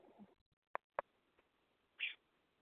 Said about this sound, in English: I mean, they're also well-behaved for birds, so. Right, guys? They're not constantly screaming. Just occasionally.